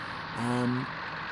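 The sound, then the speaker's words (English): A white and blue truck's engine, as it is driven out into an underground excavation cave, gives a short, steady droning hum that swells for about half a second over a constant hiss of background noise, then fades back out. “This white and blue truck is just lovely. Being driven out into the cave area.”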